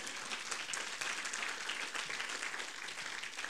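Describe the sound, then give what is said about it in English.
An audience claps their hands to Jesus in a dense, steady burst of applause that stays loud and even for a few seconds, with no one speaking over it. “If you believe what I say, clap your hand to Jesus and say amen.”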